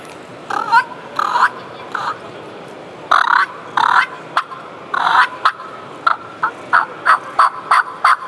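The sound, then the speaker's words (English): A turkey hen's purr and cluck, a content hen sound, imitated on a mouth call for turkey hunting, the purr made by fluttering the tongue: a few rolling, fluttery purrs, then a quick run of sharp, evenly spaced clucks, fairly loud with no talking. “That purr and cluck is going to be that content sound with a hen.”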